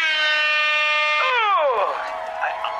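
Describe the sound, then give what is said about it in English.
A loud, sustained air horn blast with a brassy, buzzing tone holds steady for over a second, then slides downward in pitch and trails off into a noisy jumble. “If the audience stop laughing, a fucking air horn goes off and you're booed from the stage by a bunch of stag and hen parties.”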